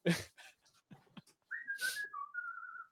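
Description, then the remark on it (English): A person whistles a short run of clear, sustained notes that step down and back up in pitch, fairly loud, following a few brief scuffing noises. “That was a good whistle, dude.”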